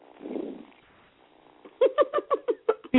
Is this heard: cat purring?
yes